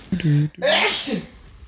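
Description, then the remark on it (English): A single loud sneeze: a short voiced 'ah' intake followed by a sharp, hissy burst of breath that quickly fades. “If you sneeze, you got the corona.”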